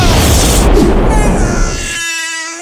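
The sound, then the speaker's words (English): A loud cannon blast roars out as a sustained, rumbling boom, then fades into a steady, ringing whistle-like tone near the end. No one speaks. “Did you load that cannon with a giant baby?”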